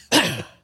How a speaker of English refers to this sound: I clear my throat here.